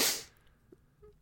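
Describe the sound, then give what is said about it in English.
A single sharp sneeze bursts out, loud and breathy, then quickly fades into near silence with only faint background noise after. “God bless you. God thank you.”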